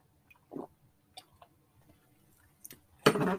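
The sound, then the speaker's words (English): Someone takes a swig of a drink: a soft wet gulp and a few faint mouth clicks, then a louder rushing exhale-like burst at the end. No talking. “I had to take a swig if you didn't hear it and figure it out.”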